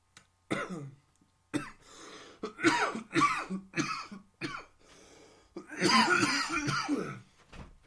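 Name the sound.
heavy coughing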